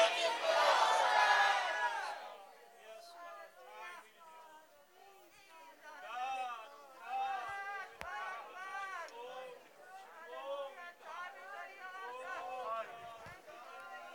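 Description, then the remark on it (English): An audience shouts "tie me to the altar" together on a count of three in one loud, ragged burst lasting about two seconds, then many voices carry on at a lower level, overlapping in lively chatter and calling out. “When I count to three, scream out, tie me to the altar.”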